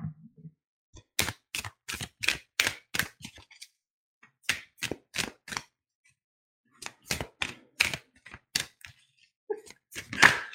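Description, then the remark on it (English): A deck of tarot cards being shuffled in quick bursts of crisp snapping riffles, fairly loud, with short pauses between each run of about five or six sharp slaps. “But I'm going to go ahead and just do some light shuffling.”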